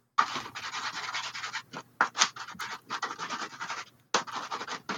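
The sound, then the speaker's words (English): Rapid, ferocious scribbling on paper in a shared hostel room during the night: dense bursts of harsh, hissy scratching broken by brief pauses, with a sharper stroke or two standing out, fairly loud and with no voices. “And about halfway through the night, he hears like this ferocious, like scribbling on paper, just like.”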